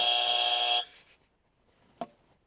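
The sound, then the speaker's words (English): A loud, harsh game show buzzer blares for just under a second and cuts off abruptly, followed by near silence and one brief knock. “I didn't land on the buzzer. The buzzer's landed on me.”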